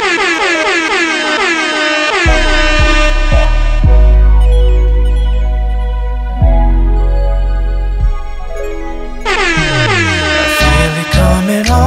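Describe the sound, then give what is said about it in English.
Loud, blaring air horn blasts: a few quick short honks followed by two long sustained ones, cutting in over music that drops out and returns afterward. “Hit my air horn this bitch so they know I'm serious.”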